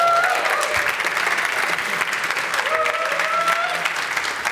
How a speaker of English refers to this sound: And by the way, spoiler alert. The friend became a fiance. Round of applause.